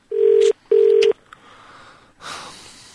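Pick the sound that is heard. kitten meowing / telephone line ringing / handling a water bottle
telephone line ringing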